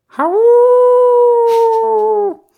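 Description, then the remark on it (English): A person mimics a werewolf howl: one long, loud, steady wail lasting about two seconds, rising at the start and cutting off abruptly, with no talking around it. “I've been practicing that for a long time.”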